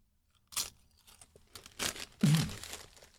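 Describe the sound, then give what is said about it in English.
A crinkling bag of Cool Ranch Doritos and crunching tortilla chips: a brief pause, then a series of irregular crackly bursts, ending in a louder, fuller crunch. No one speaks. “Forgot I had Cool Ranch Doritos.”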